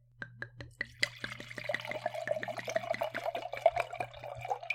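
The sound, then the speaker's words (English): Malbec red wine pours from a screw-cap bottle into a glass: a few quick glugs, then a steady gurgling stream that runs for several seconds over a faint low hum. “Oh, a modest pour from your side.”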